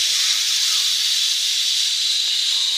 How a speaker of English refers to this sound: I'm like, what is going on? And at first I thought it was the coffee maker, that it was like on and hissing, like it was on, you know. And finally I realized that once again, not the first time, but the hose to the ice maker was broken and spraying